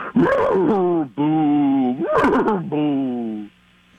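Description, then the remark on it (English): A voice imitates a ghostly horse, with a warbling, whinny-like cry that wavers up and down, breaks off, then returns in long, moaning, drawn-out wails before fading out. “Okay, let me try a ghost horse.”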